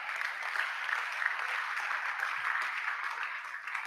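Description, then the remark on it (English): A crowd at a church sermon claps and applauds continuously, a dense, steady, loud wash of many hands, with no one speaking over it, as the preacher urges them to clap. “If you don't clap, well, I just have to end because you are not appreciating the message I'm preaching.”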